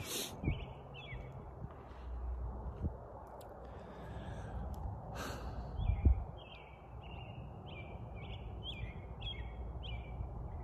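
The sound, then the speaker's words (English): Outside, a bird sings a steady run of short, repeated high chirps over a low background rumble, with a brief louder thump midway; no one speaks. “That fucking bird, too, just singing its little heart out.”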